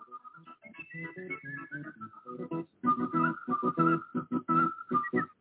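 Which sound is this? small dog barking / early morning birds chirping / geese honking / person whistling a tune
person whistling a tune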